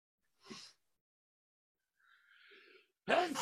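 A single short, sharp sneeze bursts out of near silence, followed by a soft breathy exhale and then someone starting to speak.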